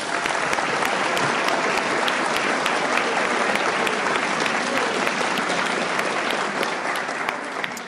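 A crowd bursts into sustained applause, loud and steady with dense clapping throughout, tapering only slightly toward the end; no one speaks over it.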